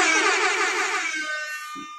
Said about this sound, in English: And then we were over here with air horn buttons, right?